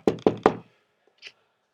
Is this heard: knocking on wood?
yes